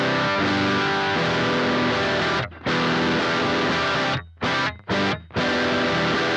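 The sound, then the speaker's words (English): Heavily distorted electric guitar, played through a distortion pedal with switch number 1 down (distortion mode), plays loud, saturated sustained chords, with a few brief stops and restarts near the end. No one speaks. “With number 1 down, it's more of a distortion.”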